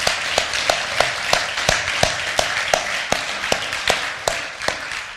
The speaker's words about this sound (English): And I think it's appropriate, before we jump in this morning, would you just show your love and affection for Pastor Al and Sheila, give them a huge, huge hand.